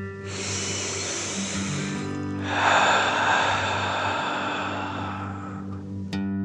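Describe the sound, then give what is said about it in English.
A long, airy deep inhale through the nose filling the belly, then a fuller, louder breath pushed out through the mouth, a relaxing breath, over a steady low background hum. “Breathe in through your nose, filling up your belly, and then out through your mouth, imagining you are breathing fire.”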